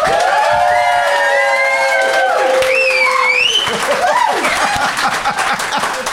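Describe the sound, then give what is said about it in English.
A crowd claps steadily for several seconds as a vote for the side with the best case, a dense rattling wall of applause, while cheers and shrill whistles rise and slide above it before it begins to thin out. “But if you think Will and Fanshawe, and therefore Dan, have the best case, please applaud now.”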